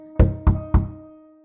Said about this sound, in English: she hears that sound again. Three soft knocks on her bedroom door. She gets up and moves quickly to the door and yanks it open, but no one's there. She heads back to bed and the knocking starts again.